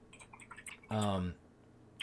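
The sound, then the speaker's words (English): Light, rapid clicks of typing on a computer keyboard, faint and a little distant with a wet, dripping quality, interrupted by a short burst of voice before a final click. “your typing is so loud. That's a very watery keyboard.”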